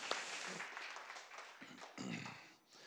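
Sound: audience applauding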